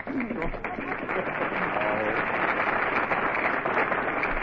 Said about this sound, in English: All right, folks, you made your applause. Now lie in it.